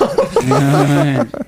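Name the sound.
throat clearing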